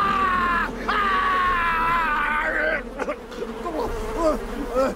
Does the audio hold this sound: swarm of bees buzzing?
yes